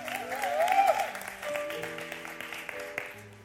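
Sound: audience hand clapping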